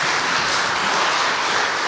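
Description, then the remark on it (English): Steady, dense applause from an audience for young people thanked for their participation in bringing words of the past to life, a sustained wash of many hands clapping at an even loudness for about two seconds, with no voices heard. “If you don't mind to just give them one more round of applause just for their participation.”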